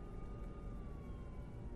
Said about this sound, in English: Except for the rising moan of sirens, the park was again silent.